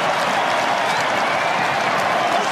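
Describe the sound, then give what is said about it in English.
A large stadium crowd of fans at a rugby match involving Newcastle stands and applauds as Johnson strolls past them at the southern end, celebrating. A dense, continuous wash of clapping and cheering at a constant loud level throughout, with no break or distinct voice standing out. “They stand and applaud as he strolls past these fans.”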